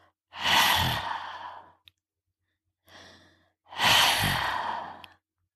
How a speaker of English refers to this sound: Imagine you are fogging up a pair of glasses. You should hear a soft hissing sound like that.